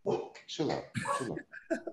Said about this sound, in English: Chill out. My dogs be tripping. I hear the dog barking on the, in the background.